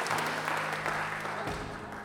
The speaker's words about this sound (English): Give Jesus a big clap. Come on.